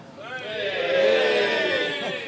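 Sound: audience cheering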